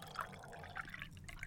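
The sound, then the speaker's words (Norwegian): Water is poured into a small cup, a steady trickling splash with bright bubbling bursts, fairly quiet with no talking. “Ja, ta litt vann. Høres som du tisser I en liten skål.”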